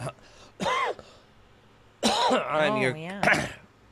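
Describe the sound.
A short, rough cough, then a longer bout of throaty, gravelly throat clearing with some voiced rasp, fairly loud.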